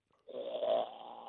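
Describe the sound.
A man imitates a koala's call with one rough, snore-like guttural bellow that swells loudly and then holds raspy for about a second, with no words around it.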